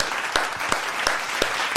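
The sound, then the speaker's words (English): An applause sound effect: a crowd claps steadily, a dense wash of applause with sharper individual claps popping out, moderately loud, with no voices over it. “Let's be honest, clap that in. Great, audience loves that.”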